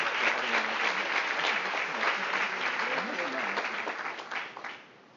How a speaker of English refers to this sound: Yeah, let's give him a hand clap for that.